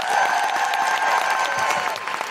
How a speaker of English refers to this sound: Thank you so much for being an amazing audience, Brighton. We've really loved you. And please, can I have a huge, huge, huge round of applause for the incredible Jessica Hynes.